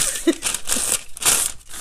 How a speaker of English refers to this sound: You're going to hear some kitchen sounds. That's me. I'm grabbing a piece of parchment paper